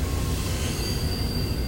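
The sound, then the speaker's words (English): A heavy freight train rumbles steadily along the rails, deep low-end roar constant throughout, with a thin metallic squeal of wheels ringing high above it. No voices. “A freight train is rumbling down the tracks.”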